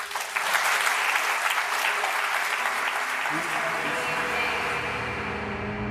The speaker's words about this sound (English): The tears, the applause.